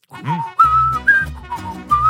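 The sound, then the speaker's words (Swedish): A person whistles a short, bouncy tune, clear pitched notes stepping up and down in a quick rhythm, with no talking. “han visslade hela tiden, alltså hela dagarna på La Cucaracha”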